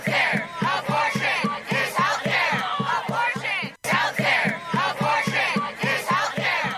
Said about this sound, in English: And shortly after the report came out, protesters gathered outside the Supreme Court and yelled their disapproval.